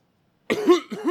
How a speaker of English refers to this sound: Ignore the coughing sounds coming from the nut, President Carter.